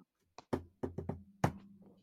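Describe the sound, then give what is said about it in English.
A quick run of firm knocks on the door of a flat in Croydon, tapped out in the playful, uneven shave-and-a-haircut rhythm, a few beats then a pause and a final rap, with no talking. “We go to the flat in Croydon, and he knocks on the door.”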